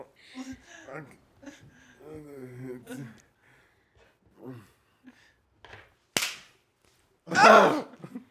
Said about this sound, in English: You slapped us both at the same time with two different hands.